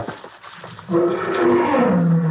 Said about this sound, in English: What was that? Big cat out there somewhere. Good, good. Maybe we'll get a crack at him tomorrow.